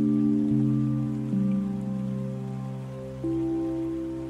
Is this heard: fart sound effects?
no